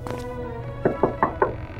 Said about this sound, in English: Shall we knock?